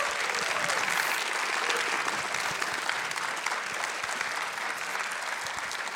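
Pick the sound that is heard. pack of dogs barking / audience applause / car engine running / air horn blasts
audience applause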